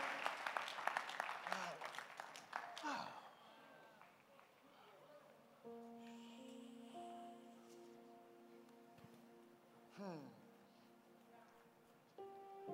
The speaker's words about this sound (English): Are you clapping your hand for Jesus? Stand to your feet.